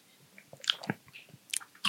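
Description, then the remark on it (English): Mouth noises of someone sipping a drink and chewing a mouthful of seeds: a few sharp, crunchy bites and wet clicks scattered irregularly over a couple of seconds, with no talking. “I am going to double strain this because I just got a mouthful of seeds and I did not like it.”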